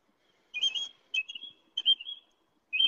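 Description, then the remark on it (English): A bird, heard through a phone, calls loudly in bright, high-pitched whistled phrases. There are four separate bursts with short trills and sliding notes, each lasting a fraction of a second with brief silences between. “Oh, that's a really loud bird, and it's echoing through your phone into my ear and back again.”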